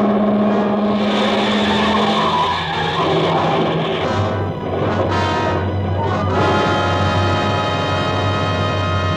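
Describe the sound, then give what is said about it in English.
A car speeds past with loud, sustained screeching of brakes and tires taking a wild curve, the engine droning underneath as the squeal rises and shifts pitch over several seconds, intense with no talking. “In my ears was the screeching of brakes, of tires taking a wild curve.”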